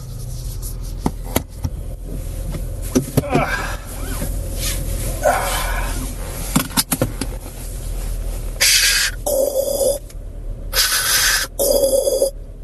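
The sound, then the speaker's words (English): A person mimics respirator breathing with their mouth: two pairs of harsh, hissing in-and-out breaths near the end, following a stretch of rustling and scattered clicks. “No, that's not my breathing apparatus. I'm just doing that sound on my own.”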